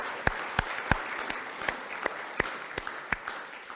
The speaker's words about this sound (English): So let's give them a wee clap just to say thank you so much.